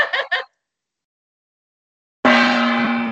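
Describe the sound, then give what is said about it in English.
A gong is struck once with a sudden loud crash, then rings on with a rich, shimmering hum of layered tones that barely fades. Two short, rough bursts of sound come first, followed by silence. “Bring up the gong, bitch!”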